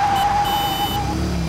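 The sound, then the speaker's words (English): Steady traffic rumble fills a busy city street while a single horn blares loudly for about a second, before fading back into the engine noise. “I didn't think there was any way we could go anywhere with all the traffic in this busy city.”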